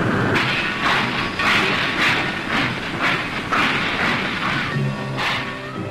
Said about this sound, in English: The men going to work can see the freight trains bringing in the raw materials, iron ore, coal, and limestone.